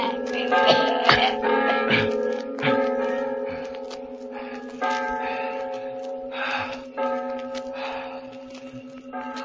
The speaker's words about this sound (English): You'll never ring those cursed bells again.